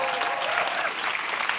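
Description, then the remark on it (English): A large audience breaks into sustained, dense applause with some scattered cheering, steady and fairly loud throughout, cheering to thank the people serving, such as the door holders. “And if you wanted to cheer for them now, that would be appropriate.”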